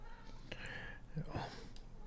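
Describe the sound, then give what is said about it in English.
A single muffled meow from a cat outside a closed door, wanting to come in, faint, rising then falling over a second of low background hum. “Sorry, my cat's outside the door, too.”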